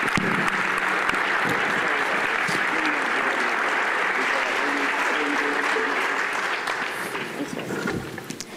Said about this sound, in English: So let's give them all a round of applause.